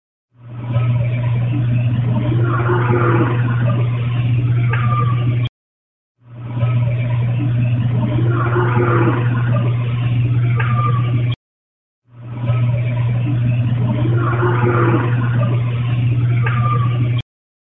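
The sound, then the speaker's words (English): A recording, with noise reduction applied, of a low, rough growl followed by a brief thin whistle, played three times with short silences between, all over a steady low hum and hiss. “Here's the first growl with the whistle that follows it again.”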